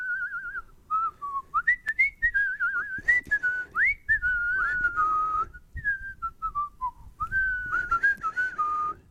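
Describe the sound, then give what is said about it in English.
Someone whistles a wandering, melodic tune for several seconds, the clear tone sliding up and down between phrases with brief pauses, fairly loud, with soft background rustling underneath. “Yeah, it's whistling. Just somebody whistling away.”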